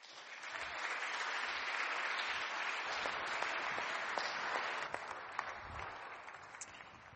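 An audience applauds: a dense, steady crackle of many hands clapping for several seconds, easing off a little toward the end. No one speaks.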